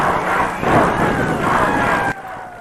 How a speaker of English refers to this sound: Crowd, go Dutch, go. Go Dutch, go. The audience gets into it. Go Dutch, go.